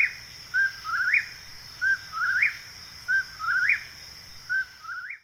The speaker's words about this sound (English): any human in Uncasville should beware when they hear the call of the whippoorwill